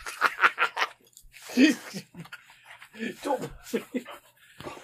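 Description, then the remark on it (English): A dog pants and licks a person, with quick breathy bursts and wet, smacking sounds coming in irregular clusters, and a person's voice at moments. “I love you too, Lola dog.”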